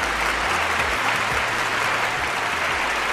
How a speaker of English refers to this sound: Oh, fans, every single time that you give me a warm applause or come close to the speakers to listen to this beautiful podcast and show every riveting week, unless something happens and I can't record, I thank you so much